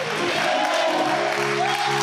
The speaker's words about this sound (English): Clap your hands and shout, I believe it.